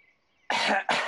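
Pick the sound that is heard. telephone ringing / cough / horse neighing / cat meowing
cough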